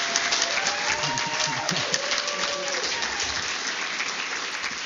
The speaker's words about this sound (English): Please give another huge round of applause for the Science Night folks.